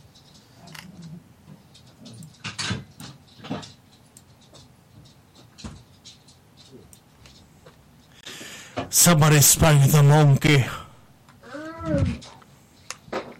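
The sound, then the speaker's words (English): About six puppies whine and yap in a room, the one heard most being Cosmo, a Jack Russell Shih Tzu mix: a cluster of sharp, high yelps near the middle, then a rising and falling whine, with scattered clicks and a man speaking briefly. “Sorry, right now I got like 6 puppies in the room here.”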